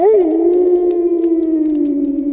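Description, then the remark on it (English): An enormous cone-shaped seashell horn, blown by mouth, blares one long, loud, howling blast, a steady low droning tone that swells briefly at the start and holds unbroken to the end. “He reached back and retrieved an enormous cone-shaped seashell from behind his boulder. Putting his mouth to its end, he puffed out his huge, round cheeks and blew.”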